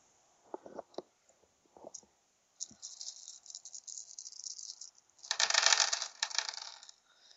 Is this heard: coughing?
no